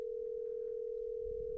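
A steady, unbroken telephone ringing tone on an outgoing call to a person holds one even pitch throughout, moderately loud and clear, with no voices over it.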